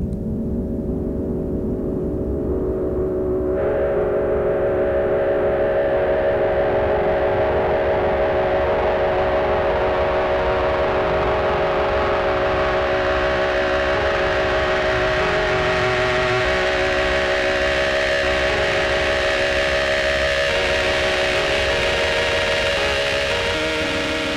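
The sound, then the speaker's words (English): A loud, sustained distorted piano synth tone from an old Multivox bass combo electric piano, run through a filter and distortion, drones on steady pitches while the filter knob is turned, making the buzzy tone steadily brighter and harsher over about twenty seconds, with no talking. “But I ran that through a filter and some distortion and just turned the filter knob and voila.”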